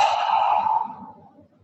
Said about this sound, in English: Let's take a deep breath together, breathing in and out.